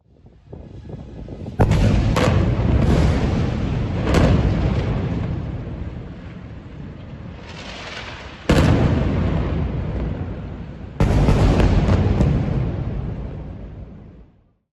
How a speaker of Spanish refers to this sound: En poco tiempo, las fuerzas israelíes atacaron la Franja de Gaza, donde viven 2,4 millones de palestinos. Uno de los cohetes destruyó un edificio de apartamentos de 11 pisos.